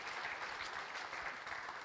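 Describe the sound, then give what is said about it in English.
An audience applauds steadily, a dense, even wash of many hands clapping at a constant loud level with no voices over it. “So let's all just give them our round of applause this morning.”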